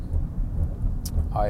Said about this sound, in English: Driving in the car on this dark and gloomy afternoon to pick up my daughter from school. Looks like it's about to absolutely dump down with rain.